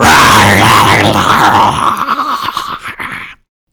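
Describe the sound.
A weak wolf growls triumphantly: a loud, low growl rumbles steadily for about two seconds, then breaks into rough, stuttering snarls before cutting off abruptly.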